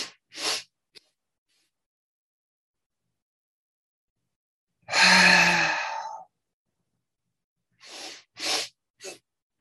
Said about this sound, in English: Now we're going to shift the staccato to the inhale. Try breathing in through the nose, out through the mouth.